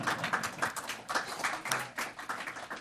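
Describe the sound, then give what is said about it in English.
An audience applauds at a book talk as the speaker is invited up, many hands clapping in a dense, irregular patter that holds steady for about three seconds at a fairly soft level, with no voices over it. “You're allowed to applaud.”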